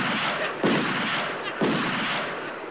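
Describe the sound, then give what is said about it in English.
Two loud, booming gunshot blasts, about a second apart, each a sharp crack that rolls into a long rumbling tail, in a comedy reenactment of the Warner Brothers "Wabbit season, Duck season" cartoon. No one speaks. “Fire!”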